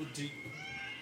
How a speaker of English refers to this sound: Crazy cat. Yes. You can hear him.